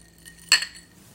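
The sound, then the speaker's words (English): A single bright clink of glasses touching in a toast, sharp and ringing briefly, then fading quickly into quiet. “I raise my glass to another thing of the past. Here's to you, Blockbusters.”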